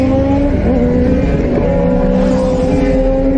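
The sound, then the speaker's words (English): Several motorcycle engines roar loudly and continuously as the bikes speed through an intersection against a red light, their droning pitch wavering and rising slightly, with no voices over the noise. “Three motorcycles blow through.”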